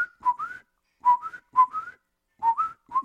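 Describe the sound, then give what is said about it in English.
A person whistles an imitation of a bird call for a phone app listening for birds, recorded in Ottawa on January 17, 2023: short repeated phrases of clear, mid-high tones that slide upward, in four bursts separated by brief pauses, with no talking. “So I'll make a bird sound.”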